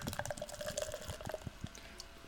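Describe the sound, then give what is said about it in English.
An apple pie sour beer from Hidden Springs Ale Works in Tampa, 5.5% alcohol, pouring into a glass: a steady gurgling glug with fizzing and splashing that runs continuously for a couple of seconds, no talking. “Let's get this bad boy a pour.”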